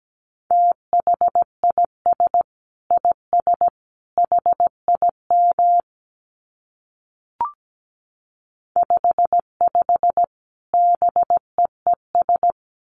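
Morse code at 17 words per minute in a steady mid-pitched tone, keyed in short dots and longer dashes. Two runs of code are split by a pause holding a single sharp click.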